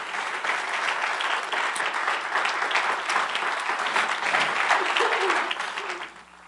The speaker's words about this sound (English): Go ahead and give those ladies another round of applause, please.